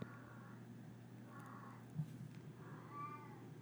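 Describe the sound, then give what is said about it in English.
A cat sitting outside a door meows three times in long, drawn-out wails, sounding muffled, with a steady low hum running underneath. “But I can't sleep in it because this cat is obsessed with me and it sits outside the door and does this.”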